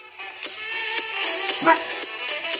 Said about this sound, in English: I know, right? I keep my dogs here in the studio with me, and that was my youngest just saying, hey.